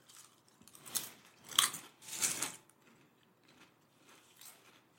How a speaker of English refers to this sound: We really shouldn't have picked something that crunches as a snack between episodes.